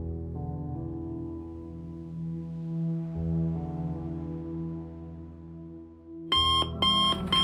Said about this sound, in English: Summer concluded to the teeth-rattling sound of my alarm clock.